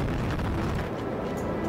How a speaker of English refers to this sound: All right. We have a go for main engine start. And we have main engine start. 2-1. Booster ignition and liftoff of Discovery.